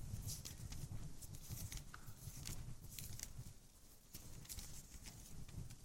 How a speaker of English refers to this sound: I'm hearing the pages turning. That is a good noise to hear.